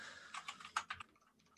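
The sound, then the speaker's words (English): Quick, uneven bursts of mechanical keyboard clicks, about five or six crisp keystrokes together, fairly quiet, with no one speaking and the typing trailing off into near silence. “I think all these clickings are gonna be taken out. Yeah, but I do love the clicking though. I love mechanical keyboards.”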